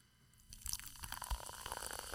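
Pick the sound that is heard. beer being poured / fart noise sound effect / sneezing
beer being poured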